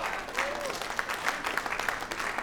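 An audience applauds with steady, dense clapping that holds a moderate level throughout, with no voices rising above it.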